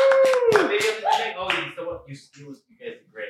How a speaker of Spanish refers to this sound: Yeah, bravo, aplauso, bravo. Woo!